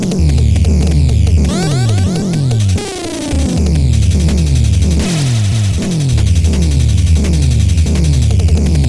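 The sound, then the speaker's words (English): Loud, harsh static fills the whole stretch, pulsing in a steady throbbing rhythm with warbling electronic sweeps mixed in. Nobody speaks. “Ugh, static.”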